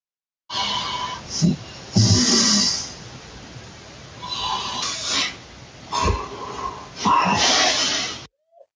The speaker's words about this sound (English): So you hear her snoring, but... Oh, okay. You can hear her breathing, but between that you can hear... something.